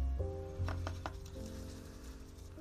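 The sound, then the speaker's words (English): A paintbrush sweeps softly across paper, giving a faint, steady papery hiss with a few quick brush strokes, over a low background hum. “It's my favorite noise. That's my white noise. The impossible ocean, paper and brush.”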